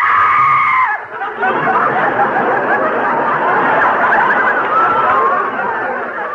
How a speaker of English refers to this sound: Oh, no, I'm sorry I screamed.